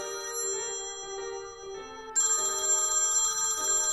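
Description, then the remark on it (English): A telephone rings with a steady electronic tone that steps between pitches, turning brighter and louder partway through, as a daughter phones her mother. It sounds clear, with no voices. “So when Janie, her very sensitive daughter, phones up to find out how she's doing”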